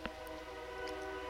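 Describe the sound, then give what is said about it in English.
The horn of a passing train blares in a steady, sustained tone, its layered pitches holding without a break, loud, with no one talking over it. “if a train goes by, you fucking hear it”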